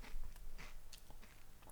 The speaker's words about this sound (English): Well, I'm eating some Dairy Dunkers before my dinner because I've hardly eaten today. Are they Dairy Dunkers with bits of herbs and stuff in them?